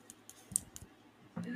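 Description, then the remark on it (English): A handful of crisp clicks from a small keyboard, tapped in an uneven rhythm, then a louder voice-like sound comes in near the end. “She can make clickies.”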